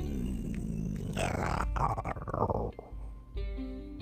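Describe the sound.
A voice does a low, rumbling imitation of a lion waking up, a growling drawn-out groan that swells into a long yawn-like roar and trails off, fairly loud.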